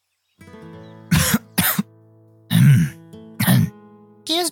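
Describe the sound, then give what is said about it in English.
Five loud bursts of harsh coughing and throat clearing in an uneven sequence, each short and rasping, with a low steady hum beneath them and no speech. “A lot of coughing.”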